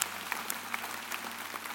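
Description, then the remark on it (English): A crowd of people clapping together for the gospel, a dense, steady patter of many hands with scattered sharper claps standing out, moderately loud and without any voices. “Listen, if you're a guest today, you want to clap for the gospel? That's great. Let's do it.”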